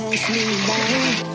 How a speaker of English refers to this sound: So we're going to plunge this in some boiling water and then straight into an ice bath. Boom. We just strain that off.